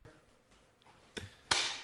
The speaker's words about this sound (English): Crazy fucking sound coming in my ear. This fucking stupid hammering.